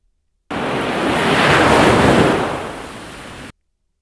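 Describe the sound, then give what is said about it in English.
Ocean waves surge onto the shore in a single broad swell that builds, peaks and recedes, a loud hiss of surf with a windy rumble underneath and no voices. “let's hit you with some tasty waves.”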